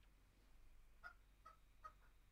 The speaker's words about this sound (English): What's that? You did not bring a chicken. Did you bring another chicken into the studio? Oh, yeah, I did. Or is that your phone?